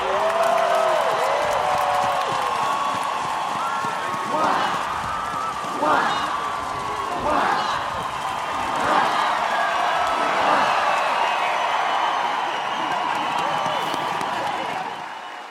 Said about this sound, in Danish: Och nu kommer kung Fredrik den tionde ut på balkongen och möts av folkets jubel.